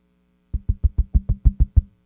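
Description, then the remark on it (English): A rapid series of nine firm knocks on a door, evenly spaced, with a dull woody thud to each rap. No voices accompany them. “Well, they'll knock on the door a little bit.”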